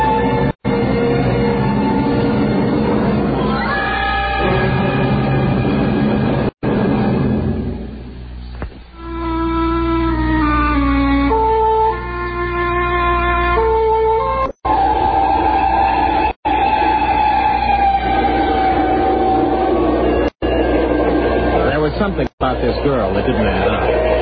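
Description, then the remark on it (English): A steady low rumble of a night train to Paris rolling along the tracks carries on throughout, with voices chattering and murmuring over it in a busy carriage. “But there was really nowhere to go on board the night train to Paris.”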